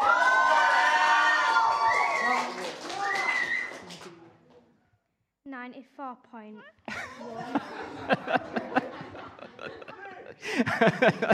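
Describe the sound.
An audience of many voices shouts "Scrap the Dog" together loudly on a 3-2-1 countdown for a few seconds, then drops off. A few high squeaky calls follow before another burst of mixed shouting and laughter.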